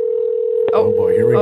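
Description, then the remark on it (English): A steady, continuous telephone ringing tone plays on a call line, and partway through a voice starts talking over it while the tone carries on underneath. “I hear a phone ringing.”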